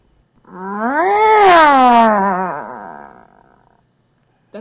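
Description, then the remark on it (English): A person imitates a satisfied cat meow, long and drawn-out, rising then sliding down with a wavering, throaty tone, loud, lasting about three seconds and fading out before silence. “This is satisfied just money meow.”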